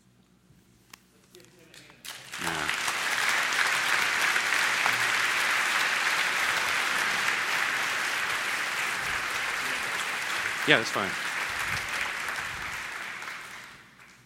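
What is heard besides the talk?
audience applause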